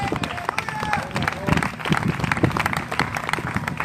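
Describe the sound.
A church audience breaks into sustained applause to honor God, a dense wash of overlapping claps that stays loud throughout, with scattered voices and shouts rising from the crowd underneath.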